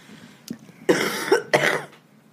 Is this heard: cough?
yes